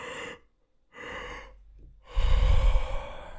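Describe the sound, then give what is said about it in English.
A person demonstrates a double inhale breathing technique: two quick breaths drawn in one after another, a short pause, then a longer, louder, whooshing sigh of an exhale. No talking, just the breathing. “when you inhale the second time through the nose or through the mouth”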